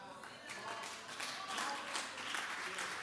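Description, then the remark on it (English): A crowd applauds steadily for about three seconds, a dense wash of many hands clapping at once, fairly loud and sustained, with some voices mixed into the noise. “Now hold on before you clap too much.”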